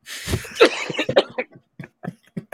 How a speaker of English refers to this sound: Excuse the cough, everybody.